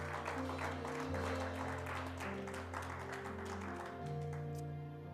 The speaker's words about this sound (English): Give a hand clap and welcome our online viewers as well, those who watch us every week.